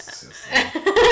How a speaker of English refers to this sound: Oh, boy, here it comes. Oh, boy. Excuse me. Bless you.